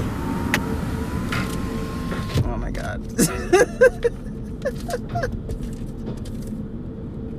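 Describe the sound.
An automatic car wash churns steadily around a car, a continuous rumbling wash of water and machinery with occasional squeaks and thumps, while a voice briefly exclaims over it.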